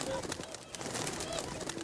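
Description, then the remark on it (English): Swans honk in short, nasal calls over a dense, hissy background of rustling noise. The calls are brief and fairly faint, scattered irregularly through a steady wash of sound. “What? What is it? I don't understand your honks.”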